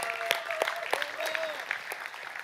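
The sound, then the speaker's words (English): An audience applauds, a steady wash of many hands clapping with some sharper individual claps standing out, sustained throughout. “So seriously, can we all give these incredibly brave and strong people a round of applause?”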